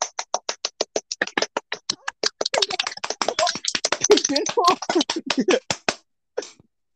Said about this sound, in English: Why are you applauding?